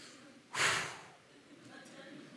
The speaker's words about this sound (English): What do you keep breathing heavy for? I got an Apple Watch, tells me my heart rate is about 130 right now, 130 beats per minute, trying to get that down a little bit, waiting on you.